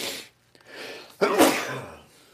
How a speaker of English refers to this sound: That was one of those, like, kick your chest in, kind of cave your rib cage in sneezes.